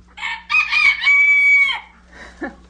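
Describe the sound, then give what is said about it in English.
A rooster crows loudly, one long drawn-out cock-a-doodle-doo lasting over a second, followed by a few shorter squawks and clucks from other chickens, as rescued birds, nearly all from the commercial poultry industry, are let out in the morning from a converted garage behind a house. “Nearly all these birds are refugees from the commercial poultry industry.”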